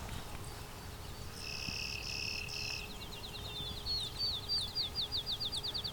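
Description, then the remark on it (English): A sparrow, a close relative of the field sparrow, sings a fairly low song: a few clear, drawn-out whistled notes, then a fast, steady trill that carries on to the end, set against soft outdoor background noise. “It's very low pitched for a sparrow.”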